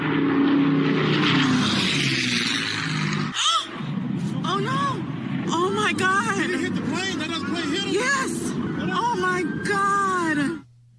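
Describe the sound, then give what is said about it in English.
Loud propeller engines of a B-17 Flying Fortress and a Bell P-63 King Cobra roar overhead at an air show in Dallas, then break off abruptly as the two planes collide midair and a crowd of spectators bursts into shocked screams, gasps and anguished shouting that continues to the end. “This is just some audio captured by spectators when those two planes collided.”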